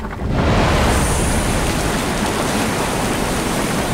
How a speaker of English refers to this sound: The tremor was only a warning. The explosion of the geyser was sudden and swift. The sound of so much water being propelled to such a height was earth-shattering.